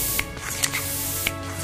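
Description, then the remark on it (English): Air being pumped into a bicycle tyre fitted with a repaired inner tube: three short, sharp hissing puffs at uneven intervals, set against a steady low background hum, with no voices. “Cautiously, we pumped it up to see whether it would hold.”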